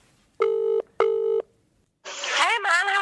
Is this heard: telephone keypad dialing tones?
yes